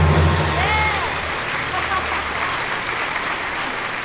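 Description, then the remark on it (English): An audience breaks into steady applause for the stage debut of the play The Girl from Egypt, a dense wash of clapping that holds for about four seconds, with a few whistles and a low hum in the first second. “Now give us your applause and take it away!”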